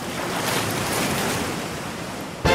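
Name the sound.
ocean waves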